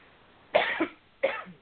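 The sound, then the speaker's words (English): Two harsh coughs, the first a double burst and the second a single one, sharp and fairly loud against a quiet background with no talking. “Oh dear, what a terrible time to get a cough.”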